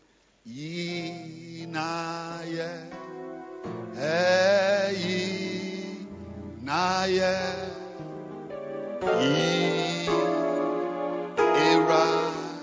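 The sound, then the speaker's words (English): A keyboard played clumsily by someone who cannot play: loud, wavering sustained chords with warbling, bending pitches arrive in four or five uneven bursts over a low droning note, giving an eerie, horror-film feel. “Is it a horror movie we are watching? It's a horror movie, yeah.”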